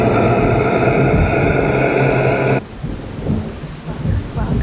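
A loud thunderstorm: a heavy, roaring rumble of thunder over pouring rain cuts off abruptly, leaving steady rain hissing with softer low rumbles underneath.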